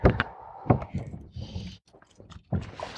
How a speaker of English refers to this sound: I'm slapping the arbor to pick up a bunch of line that's at my feet. That's what it sounds like.